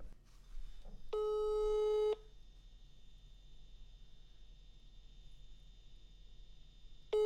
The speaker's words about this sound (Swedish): nu ringer vi upp Maja!